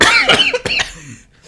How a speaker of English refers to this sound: Oh, it's throat now. Because I was ill last week, innit? Yeah. I still got the cough.